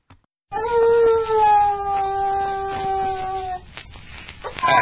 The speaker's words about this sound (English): That's a desert coyote's love call you hear. Some have given the coyote a very bad name, but all admit they're very, very smart.